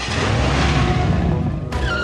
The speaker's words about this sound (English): And the enthusiasm for this particular movie also proves the enduring appeal for one of cinema's oldest and most reliable tropes, the car chase.